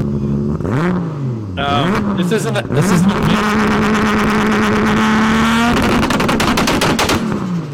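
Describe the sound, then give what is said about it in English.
A car engine blips up and down a few times, then sits bouncing off a two-step launch-control rev limiter, droning steadily with rapid, machine-gun-like pops and crackles, loud. The car's engine is the same one used in the Toyota Sienna minivan. “That is two-step.”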